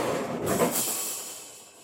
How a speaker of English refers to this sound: something just on the balcony out there had just fallen down. It was metal.